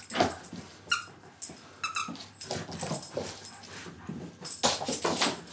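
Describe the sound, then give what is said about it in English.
A dog, Winnie, squeaks a little donut chew toy over and over, producing sharp, high-pitched squeals in quick irregular bursts, fairly loud, with faint rustling between squeaks and no talking. “That is Winnie going absolutely mad in the background. Driving us up the wall today. Squeaking a little donut.”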